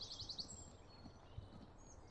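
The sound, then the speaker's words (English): Birds sing outdoors, opening with a quick run of five bright, high chirps, then fading into fainter scattered calls over a low background rumble, with no one talking. “Gosh, the birds are loud. Must be their chorus time, they're practicing.”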